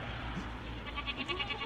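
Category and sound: animal, goat bleating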